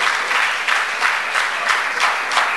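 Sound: audience clapping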